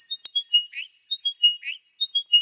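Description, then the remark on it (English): A bird sings a high, clear phrase of quick whistled notes with a brief buzzy trill, repeated twice in close succession, recorded with a parabolic microphone while approaching the bird, against a quiet background. “parabola outstretched in front of them, and they got this epic recording while carefully approaching the bird.”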